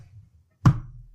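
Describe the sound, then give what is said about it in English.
One dull, solid knock comes from a bedroom in a house after a moment of quiet, with a short fading resonance and a faint low hum underneath. No one speaks. “And the host says, if there's anybody out there, knock once to let us know.”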